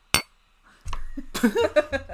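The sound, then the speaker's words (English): One bright clink of two coffee mugs knocking together in a toast, ringing briefly before people start talking over the end of it. “Yeah, we've got our coffees. Shall we cheers him? Yeah. Clink.”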